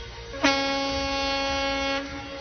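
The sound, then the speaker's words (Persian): A single loud horn blast, steady and brassy, holds for about a second and a half before cutting off. No one speaks. “بوق منو دیگه نمیزنی؟ بوق تو رو هم میزنم.”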